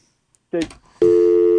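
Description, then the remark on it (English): A brief voice fragment gives way to a loud, steady telephone dial tone, a continuous unbroken hum that starts abruptly and holds at full level to the end. “if you could kill the dial tone there.”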